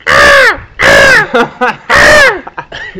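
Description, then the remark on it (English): A crow caws loudly, three long, harsh, rasping calls in a steady rhythm, with shorter, softer croaks squeezed in between, on a cloudy 16-degree day. “It's a crow, by the way, guys, if you couldn't tell by the noises.”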